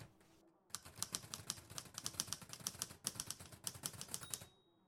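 A hunched, disheveled man stabs away at the keys of a typewriter with contempt. Rapid, uneven keystrokes clack for about four seconds, each strike a sharp mechanical snap, with no voices, then stop abruptly into quiet.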